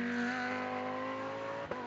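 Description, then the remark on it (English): Sports racing cars in the Acura Sports Car Challenge pass into the morning sun under the Acura Bridge and through the S's, picking up speed; engines roar in a sustained, steady drone with strong harmonic whine, loud, with a brief thump near the end and no voices. “And into the rising sun under the Acura Bridge through the S's. Speed's beginning to pick up.”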